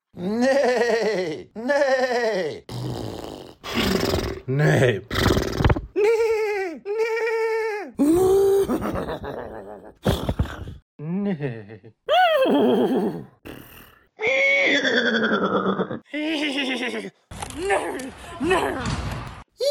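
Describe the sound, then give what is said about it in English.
A person imitates a horse whinnying over and over as morning horse noises, loud, with wavering, bleating pitch glides broken by short gasps and pauses, sounding strained and comical. “This might be the ugliest horse noise I've ever made.”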